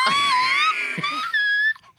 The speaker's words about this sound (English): You know what I want? I want to hear the whistle notes. Please.